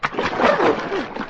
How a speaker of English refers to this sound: Pour another bucket of water on him, Jug.